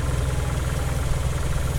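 A car engine idles steadily, a deep, even rumble with a faint rhythmic pulse and a soft hiss above it, holding at the same loudness throughout with no voices.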